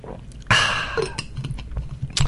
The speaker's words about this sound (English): So while I have a drink of water, you can say to yourself, where is this guy going?